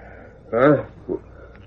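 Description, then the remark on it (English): A short, quavering horse whinny rings out once in the distance at Missouri Mike's quiet night camp, followed by a brief low snort; it is not loud. “That's a horse somewhere in the distance.”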